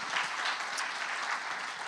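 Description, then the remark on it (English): An audience in a church on Memorial Day weekend claps steadily, many hands blending into a dense, continuous patter at an even volume throughout, with no voices standing out. “Can we give them a big hand clap?”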